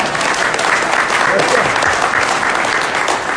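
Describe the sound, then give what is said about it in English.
An audience claps steadily for a few seconds for a boy seated in the front row, a dense, even wash of many hands with no pauses, holding a consistent loudness throughout. “So he you want to clap for that? Clap for him.”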